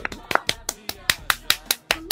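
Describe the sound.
Brief applause: about ten sharp, fairly loud claps in a quick, even rhythm over two seconds, with faint voices murmuring underneath.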